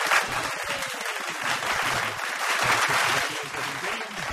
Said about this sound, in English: we have a round of applause for Jack, one of the cast members of PLPS